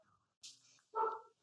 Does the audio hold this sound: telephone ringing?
no